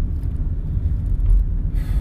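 Steady low road rumble of passing cars, with a swell as a car rolls past midway and a brief hiss near the end; no voices.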